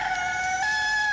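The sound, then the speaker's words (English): A loud, drawn-out rooster crow, part of a chicken-themed sound effect, holds a bright steady tone for over a second and shifts slightly in pitch midway, with no voices. “You made me think I was gonna hear the chicken music.”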